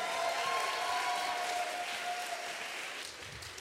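An audience at a Melbourne Spoken Word poetry night claps steadily for a few seconds for the next poet, a dense, even wash of applause that stays loud throughout and tapers slightly at the end, with no voices over it.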